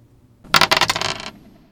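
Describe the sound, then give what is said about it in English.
Dice clatter and rattle across a hard surface in a quick burst of bright, clicking impacts lasting under a second, fairly loud, then settle into silence. “roll those dice, please.”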